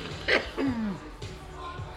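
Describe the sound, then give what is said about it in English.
A single sharp cough bursts out, followed by a brief throaty vocal sound and a few quieter breathy rasps. “I'm just coughing okay.”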